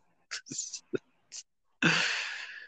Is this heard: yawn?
yes